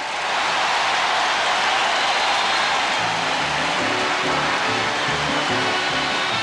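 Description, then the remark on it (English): The crowd at the Democratic National Convention applauds Barbara Jordan taking the stage for her keynote speech in a dense, steady roar of clapping that never lets up, lasting three minutes, with low sustained tones or crowd voices rising beneath it in the second half. “The clapping went on for 3 minutes straight before Jordan could speak.”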